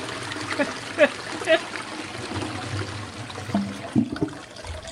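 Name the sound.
toilet flush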